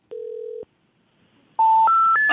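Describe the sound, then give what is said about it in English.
A brief steady telephone ring tone over the line after dialing an old number, then a pause and three loud rising electronic beeps before a recorded operator message saying the number has been disconnected. “Ringing.”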